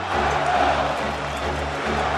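A large baseball stadium crowd chants player Marco Scudero's name in unison as he comes up with the bases loaded against the Twins, a loud, dense roar of many voices that stays steady throughout without any single voice standing out.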